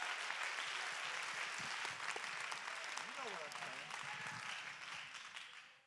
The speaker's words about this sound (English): Let's just go ahead and clap our hands to get it over with. Give him praise.